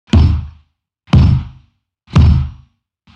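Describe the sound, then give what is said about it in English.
Four heavy, evenly spaced knocks heard in a forest at night, about one per second. Each is a sharp hit with a deep, booming body that fades quickly, like a fist pounding on a wooden door. No voices. “Not a pleasant return to the nocturnal status quo, but rather something much more akin to a door knocking.”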